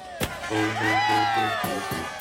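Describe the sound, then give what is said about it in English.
A lively outdoor crowd of Eagles fans celebrating in the streets of Philadelphia shouts and whoops, many voices overlapping at once, with a sharp bang near the start and rising cheers carrying steadily through the short stretch. “Some shot off large-scale fireworks, which are not legal, and police mostly looked the other way as crowds of people drank in the streets.”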